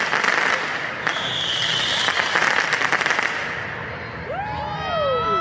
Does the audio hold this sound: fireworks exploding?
yes